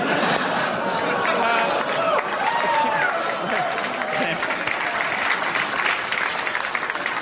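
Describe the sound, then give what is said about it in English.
A crowd boos loudly and steadily, many voices in low drawn-out tones over a dense roar of clapping and hubbub that fills the whole stretch without letting up. “Let's keep in mind the crowd was booing his actions, not mine.”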